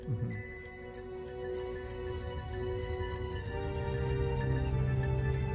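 clock ticking

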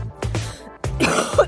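cough

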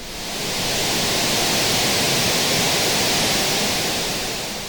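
rushing waterfall

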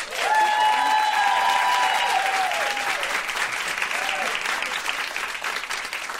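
audience clapping to vote

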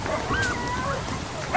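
dog howling

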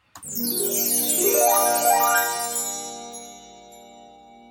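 chimes

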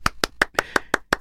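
applause

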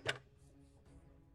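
dice rolling

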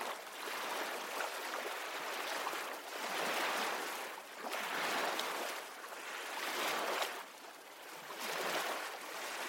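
rhythmic ocean waves

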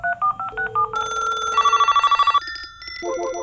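telephone dialing and ringing

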